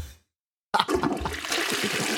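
A toilet flushes after a brief silence, starting with a sudden rush of water that continues as a loud, steady swirling gush.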